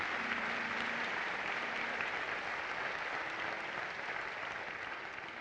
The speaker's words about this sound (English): Let's give the Lord a round of applause for all of our dignitaries. Praise God.